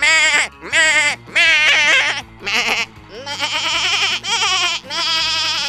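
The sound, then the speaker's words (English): A run of loud goat screams played as notes on a tiny piano whose every key makes a screaming goat sound: about seven wavering bleats at different pitches in quick succession with brief gaps, forming a rough tune; no one talks. “This is a tiny piano I invented where every key makes the sound of a screaming goat.”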